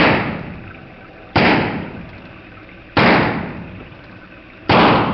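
Four loud gunshots, by which a lieutenant is shot, ring out at uneven intervals, each a sharp crack followed by a long, fading rumble that trails off before the next shot. No one speaks.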